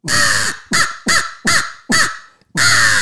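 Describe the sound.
Loud, harsh crow caws blown on a hand crow call used as a turkey locator call, in a fast, aggressive series: a long opening caw, four short clipped ones in quick rhythm, then another long caw, forceful with no talking.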